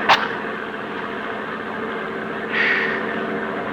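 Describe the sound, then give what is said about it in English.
A heavy armored truck engine drones steadily as it drives, a continuous rumble with a brief click at the start and a slight swell in noise near the end. No voices. “Boy, it sure gets hot in these armored trucks.”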